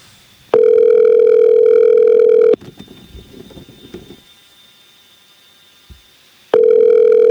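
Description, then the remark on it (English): A phone line's ringback tone as a phone call is placed on the Alski Show: a loud, steady electronic tone lasting about two seconds, then several seconds of quiet line noise before the tone begins again. No one speaks. “All right, let's see if we get this phone call.”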